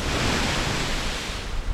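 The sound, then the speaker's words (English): A steady, full-bodied roar of ocean surf washing onto a beach, fairly loud, with no distinct individual wave breaks and no voices. “We can watch the dark ocean and eat clam strips.”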